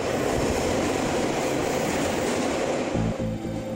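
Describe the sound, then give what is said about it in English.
A subway train rumbles past underground, a steady loud low roar with rhythmic rattling of the cars, the rumble shifting near the end as wheels clatter over the track. “Underneath that again, well, you have sewers, you have plumbing pipes, electrical cables for electricity and for TV, and then underneath that you have a subway system.”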